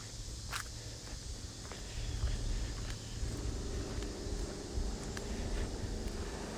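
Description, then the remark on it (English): A ride-on lawnmower engine drones with a steady low hum in York County, Pennsylvania, its pitch rising and growing a bit louder halfway through, while footsteps crunch along over it as someone walks past houses on trash day. “Somebody hopped on their lawnmower, maybe you can hear that.”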